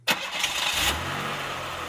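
A manual-transmission car engine cranks with a loud, gritty whir for about a second, then catches and settles into a steady, low idle rumble. No voices.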